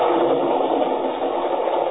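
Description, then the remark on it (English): A roller coaster car roars in a steady, dense rush of noise that holds at an even, loud level for the whole two seconds, with no voices, as it speeds around a sharp curve at better than a mile a minute and through a dark tunnel. “Gathering momentum, the car screams around a sharp curve at better than a mile a minute. It roars through a dark tunnel”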